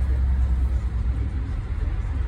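Steady low rumble of road traffic, engines droning continuously at a fairly loud, even level with no clear horn or individual pass-by standing out.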